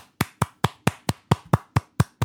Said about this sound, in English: I'm going to give him a nice clap.